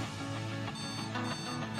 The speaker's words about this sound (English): Turn the alarm off.